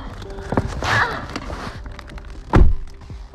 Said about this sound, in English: Hi guys, let's close the doors. Why? For the acoustics.